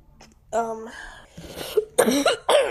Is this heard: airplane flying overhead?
no